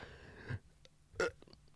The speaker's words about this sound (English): I can't even burp.